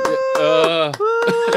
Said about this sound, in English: Anemic fucking clap.